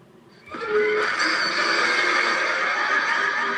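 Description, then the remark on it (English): The roar of the Mother Spherosaurus, a giant monster 88 meters tall and 88,000 tons, bursts in after a brief quiet moment and holds loud and steady for about three seconds, rough and harmonic, with an echoing effect trailing it. No one speaks. “That was a very, very cool roar. And it had a bit of, Grisa. A little echoing effect.”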